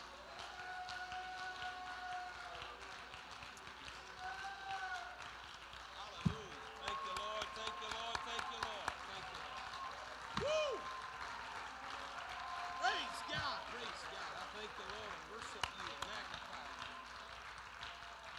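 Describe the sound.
An audience in a church sanctuary claps their hands in praise during worship, a steady, dense patter that runs throughout, mixed with voices and sustained singing, with a few sharper, louder claps standing out.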